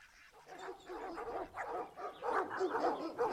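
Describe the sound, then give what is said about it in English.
Several dogs bark and yip over one another in a dense, continuous chorus, the overlapping barks rising and falling without pause. “is that sound? Pack of dogs?”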